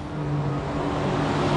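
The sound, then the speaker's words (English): A city bus rumbles past a restaurant just outside El Centro, its engine a steady, loud low drone with a humming tone throughout the short stretch, no voices over it. “Oh, that was a city bus that went by.”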